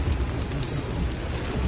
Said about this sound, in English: More than 9 inches pouring down in 24 hours Tuesday, crushing records set more than a century ago.